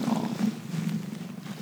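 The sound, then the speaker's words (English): A cat sitting in front of a microphone purrs loudly, a steady low rumble with a soft rhythmic pulse that continues without pause. No voices can be heard. “Sit right in front of the microphone and purr loudly.”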